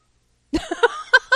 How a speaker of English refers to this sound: My cat just chimed in on that. She's meow.